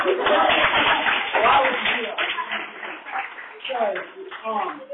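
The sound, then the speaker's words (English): An audience claps in a dense, steady patter that gradually thins out, while voices start talking over the tail end of the applause. “I don't, why would you clap for that?”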